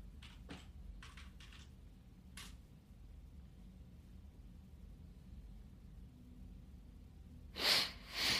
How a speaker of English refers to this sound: You hear me sniffling, boy.